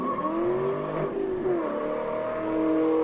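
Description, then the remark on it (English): A Ford Mustang engine revs loudly, its deep roar rising and falling in pitch over a few seconds with no one speaking. “It's all about, and here's the Mustang.”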